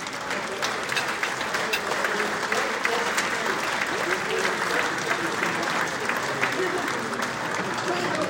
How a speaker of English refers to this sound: But can we have a big round of applause, please, for Jansen Derrick.